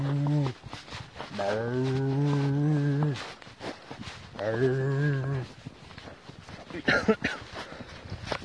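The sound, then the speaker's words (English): Two long, loud dairy cow moos, each a drawn-out harmonic bellow lasting a couple of seconds, with brief voices and outdoor rustling between and after them. “It's cows.”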